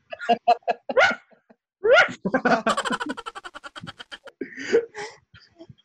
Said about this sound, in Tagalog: Wait lang, ah, tumatahol yung aso namin.